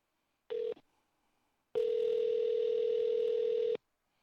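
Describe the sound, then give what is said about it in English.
A brief telephone beep, then a pause, then a steady, unbroken phone tone with a buzzy edge that holds for about two seconds and cuts off abruptly, as someone calls the Taco Bell corporate number. No one speaks. “We're calling them.”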